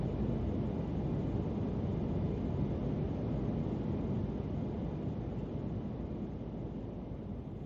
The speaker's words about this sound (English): It was actually the plane just after takeoff.